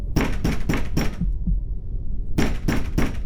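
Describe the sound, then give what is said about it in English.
Heavy pounding on a door: four loud, booming blows in quick rhythm, a short pause, then three more hard thuds at the same pace. No one speaks. “They were watching the news when they heard someone pounding on the door.”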